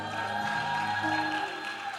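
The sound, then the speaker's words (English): A church audience claps steadily for a couple of seconds to welcome their pastor, a dense, even wash of applause from many hands, with sustained musical tones humming underneath. “And our pastor is here, Pastor Felix Owusu. Let's clap for him.”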